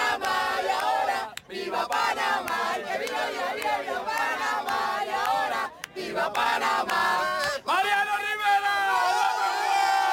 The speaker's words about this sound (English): There were people from Panama all over the field, and they could be heard all around, waving flags, chanting, stomping their feet, and cheering for their native son, Mariano, who joins Rod Carew as the only two from Panama to enter the Hall of Fame.